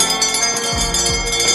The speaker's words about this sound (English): That bell means it's quitting time.